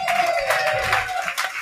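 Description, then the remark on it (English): An audience applauds a judge being introduced on a TV show, a dense and steady wash of clapping that stays loud for the whole short moment, with a faint sustained tone running underneath. “Ladies and gentlemen, a round of warm of applause for”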